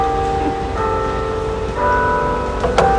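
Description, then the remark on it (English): Church bells ring steadily, their sustained tones overlapping in a resonant, continuous peal, with a brief clatter near the end. “Oh, bells are going.”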